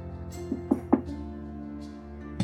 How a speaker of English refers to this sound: You do see it as a, like, a two-story building. Maybe he's upstairs. I'll knock.